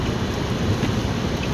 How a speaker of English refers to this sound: I'm driving here, I got people with their fucking brights on behind me, in the rain.